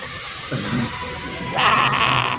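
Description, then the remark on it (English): A lower, wavering creature cry gives way to a loud, piercing shriek near the end, high and harsh, held for under a second. No one speaks. “That's a piercing shriek, in case y'all didn't Pick that up.”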